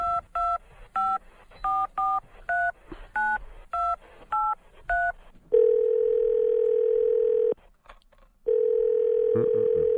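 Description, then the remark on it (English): A quick run of touch-tone dialing beeps, roughly a dozen keypresses as a phone call is placed, followed by a loud, steady telephone tone that drones for a couple of seconds, cuts out briefly, then resumes. “Now, let's call him.”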